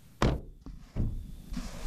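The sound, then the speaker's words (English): The front door of a white farm bungalow about 15 kilometers east of Keniston, Saskatchewan, Canada, pops open as a woman opens it: a sharp solid thunk, a lighter click, then a second dull clunk, followed by a soft rush of room noise. “As we reach the steps, she pops open the door and invites us in.”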